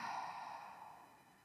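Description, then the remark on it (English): A single long, airy deep breath in and out, rushing steadily and then slowly fading as it trails off, like a deep sigh with no talking; the first of ten deep breaths. “Just going to take 10 deep breaths.”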